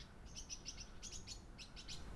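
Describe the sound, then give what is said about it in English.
Birds tweet in the trees of residential gardens in quick high-pitched bursts, a series of bright chirps repeating over a soft background hush, fairly quiet, with no one talking. “There we go, the tweeting birds.”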